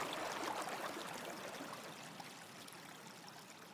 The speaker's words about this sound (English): The water is crystal clear and fast flowing. I take my shoes off and dip my toes in. Ice cold water running over my feet.